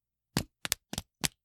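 Four quick, sharp papery smacks in an uneven rhythm, a couple of them landing as doubled slaps, like someone being swatted with paper. No one speaks.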